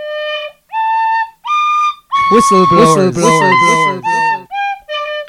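A tin whistle plays a movie theme tune as a short, bright melody of separate sustained notes, fairly loud, with a busier, voice-like stretch briefly layered over the middle phrases.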